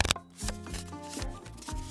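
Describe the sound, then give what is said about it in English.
A deck of playing cards is shuffled before dealing, with a quick riffle at the start and then a few soft, papery bursts over steady background music. “Handing the deck of cards back to the clockwork robot, it begins to shuffle and starts to deal.”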